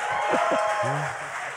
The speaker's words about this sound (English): Thank you. Tepid applause. That's okay.